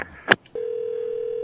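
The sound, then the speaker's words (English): A brief click and clatter, like a handset being hung up, followed by a steady, unbroken dial tone humming at one constant pitch until the end. “I was disconnected.”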